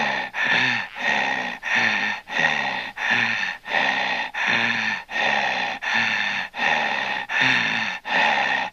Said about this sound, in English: Hello, it's me, the heavy breather from every horror film you've ever seen. You know me, first I terrorize my victim by the telephone.